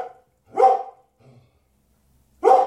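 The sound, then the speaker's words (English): A dog barks twice, loud, with a short gap between the sharp barks and a faint low grumble in the pause. “What are you barking at?”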